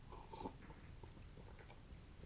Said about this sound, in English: Sip of coffee.